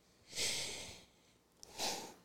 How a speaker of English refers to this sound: I open it up, take a sniff of it.